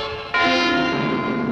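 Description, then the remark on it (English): The Venice Simplon Orient Express steam train sounds a loud, sustained whistle blast that cuts in abruptly after a moment of quieter rumble, holding a bright, steady tone. No one speaks. “This is no ordinary train.”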